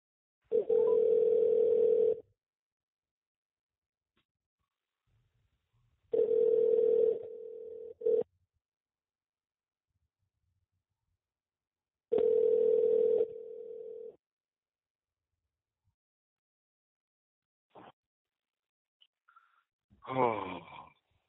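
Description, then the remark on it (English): A telephone ringback tone heard while placing a call purrs three times, each steady ring lasting about two seconds with long silent gaps between, clear, followed by a few faint clicks and a brief voice-like burst. “I'm like, if you don't pick up this phone, you get on my nerves.”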